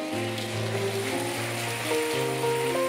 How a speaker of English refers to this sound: Can we say thank you to them and then give them a big round of applause on three? One, two, three.